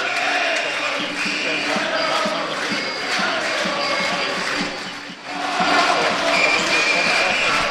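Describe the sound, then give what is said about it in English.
A loud, dense roar of a football stadium crowd at a Dundee versus Rangers match, steady and sustained, with a brief dip before swelling again into chanting and cheering; no clear speech rises above it. “struggling to hear … above the crowd noise”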